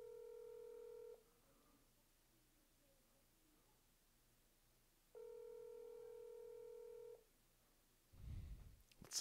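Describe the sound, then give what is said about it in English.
A WhatsApp call ringing tone sounds twice as a call to a woman is placed on air, each steady electronic ring lasting about a second with a pause between, followed by a short burst of low rustling or handling noise at the end. “Here, let's try. We'll WhatsApp her.”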